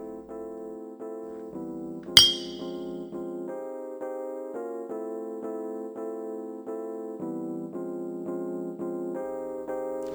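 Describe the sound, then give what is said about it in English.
A single bright clink of glasses in a toast rings out early on, sharp and short, over steady sustained musical chords that keep shifting pitch throughout. No one speaks. “And with that being said, cheers!”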